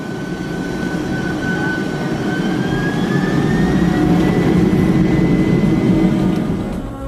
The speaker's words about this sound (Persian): در هواپیما که بسته شد و صدای موتورا به گوشم رسید، با خودم گفتم یعنی تموم شد.